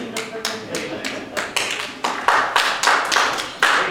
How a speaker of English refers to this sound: Hallelujah. And it's okay to clap for God sometimes, okay? It is.